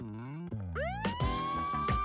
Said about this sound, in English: Should we be worried about that ambulance in the far background? No, does it add to the ambiance? Because I was literally listening to it like perfect. Still loud.